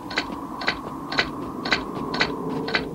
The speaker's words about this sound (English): Well, and then this whole moment here of trying to figure out what's going on is kind of broken by these stupid footsteps that T-Bob makes throughout the whole episode. Mm-hmm. This sound effect kills me.